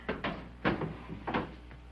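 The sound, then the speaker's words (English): A drawer slides open and shut as items are put into it, with a few short wooden clunks and scraping knocks spread over two seconds, fairly quiet and with no voices. “Here, I'll put these in the drawer for you.”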